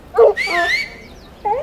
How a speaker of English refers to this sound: No. Stay back. Get those dogs away from me. Titus, Rufus, settle down now. Settle down.